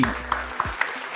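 A short burst of applause, a steady wash of crackling clapping with a few sharper accents standing out, moderately loud and with no voices over it.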